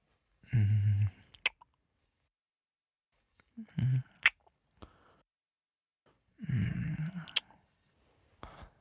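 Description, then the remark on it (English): Three soft kisses on the neck spaced a few seconds apart, each a brief breathy rush ending in a crisp lip smack, with quiet pauses between and no talking. “Feel my soft kisses on your neck.”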